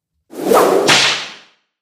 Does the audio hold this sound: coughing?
no